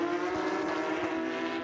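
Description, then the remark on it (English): The engine of the number 48 Apex Porsche GT3 Cup race car, driven by Dibril Senior, coming down the hill holds a loud, steady high-revving drone with strong harmonic tones, sustained without a break, with no voices. “Apex car coming down the hill there.”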